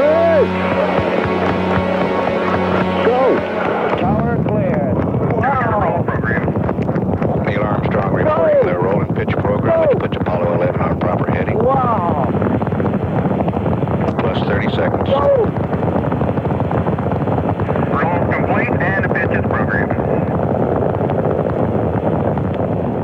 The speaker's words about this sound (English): We were very, very close. So the rocket, when it did take off, the impact was literally that. It was the impact of a wall of sound hitting us. The ground began to shake.